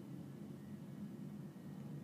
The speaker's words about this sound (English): Oh my gosh. Speaking of an airplane.